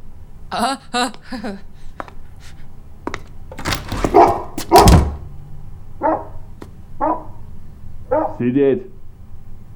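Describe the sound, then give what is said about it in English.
A dog named Bear barks repeatedly and loudly in short irregular bursts, with a heavier scuffling thump partway through before a few more sharp barks, as it is being secured. “Dog secured. You can come in now.”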